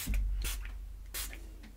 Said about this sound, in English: And spray this.